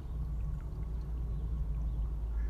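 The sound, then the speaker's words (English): Water from a small creek at a little wooden bridge flows steadily, a continuous rushing wash with a low rumble and faint gurgling, moderately loud, with no voices. “Because I found that voice here, at this little creek, crying my eyes out on this bridge.”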